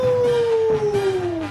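A single long, loud wolf howl, holding one steady mournful pitch that slowly sinks across the whole moment, with no voices or other sounds around it.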